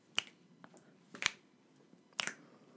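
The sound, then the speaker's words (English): Three crisp finger snaps ring out at a steady, unhurried pace, about one per second, clear against an otherwise quiet background. “Okay, like everybody with fingers, snap your fingers. Like this.”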